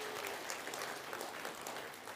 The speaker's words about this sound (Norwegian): Halleluja. Ja, gi Jesus en god klapp.